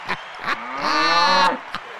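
A single drawn-out cow moo, low and harmonic-rich, lasting just under a second, framed by a few short knocking clicks before and after.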